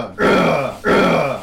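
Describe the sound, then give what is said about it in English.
A person imitates a fighter hammering an opponent with overhead strikes, giving two loud, strained tennis-style grunts in quick succession, each a forceful voiced burst lasting about half a second, with a brief pause between them and no speech. “And he's just like, I don't know, just grunting really loudly like tennis.”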